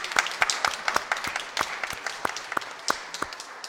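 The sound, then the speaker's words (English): People at an evening service clap for the praise band and musicians for a few seconds, a dense patter of sharp, irregular hand claps at moderate volume with no voices over it. “Give them a big clap.”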